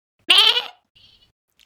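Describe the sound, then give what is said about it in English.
A person mimics a goat with one loud, nasal, wavering bleat lasting about half a second, followed by a faint breathy noise and the start of another voice at the end. “I am very, very bad at human voices, but I'm quite good at animal sounds, so maybe you'll get more animals. Do a goat.”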